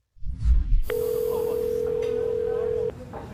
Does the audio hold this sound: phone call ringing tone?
yes